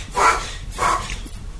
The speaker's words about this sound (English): Whoa, is the dog okay? He's just coughing. Yeah, he's cool. Dogs do this. He probably needs water.